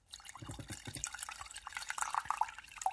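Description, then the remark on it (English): Plain non-carbonated mountain water is poured into a glass, trickling and splashing steadily, with bright bubbling drips rising in pitch as the glass fills; no voices present. “A little ASMR.”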